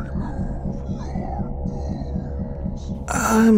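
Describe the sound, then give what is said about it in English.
Radio interference: a low, pulsing electronic throb with a steady hum, ending in a loud burst of harsh static and a warbling whine near the end. “This interference is Troubling, to say the least.”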